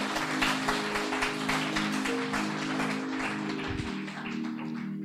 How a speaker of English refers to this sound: Let's give the Lord the loudest clap offering that we can give him.